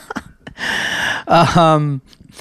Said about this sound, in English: I'm just having a yawn, everyone. He puts me to sleep, this guy.